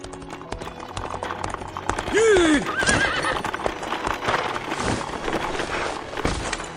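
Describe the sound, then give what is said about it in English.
Steady hooves clip-clop on hard ground throughout, clear, as a mounted rider dashes toward a city gate at twilight, while the horse lets out a loud, falling whinny partway through. “He mounted his horse and dashed toward the ghost city in the twilight and dismounted near the city gate.”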